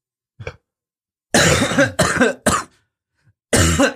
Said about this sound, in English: Cough, cough.